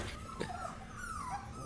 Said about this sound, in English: Oh god. Oh, puppies.